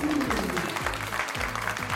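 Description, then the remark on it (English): An applause sound effect: a dense burst of crowd applause, many hands clapping steadily at an even loudness for about two seconds, with a low musical tone sounding underneath. “Everyone, clap your fins together for our special guest, the mantis shrimp.”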